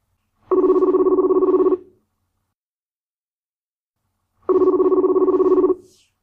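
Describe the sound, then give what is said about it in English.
Two long buzzing telephone rings as a call is placed to a man, each lasting just over a second and separated by a few seconds of silence, like a call ringing through on the line. No voices. “So let's get him on the phone.”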